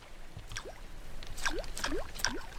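Light splashes and plops break the surface of still water under a cold, cloudy sky, one after another, a handful of small droplet-like sounds coming closer together, soft with no voices.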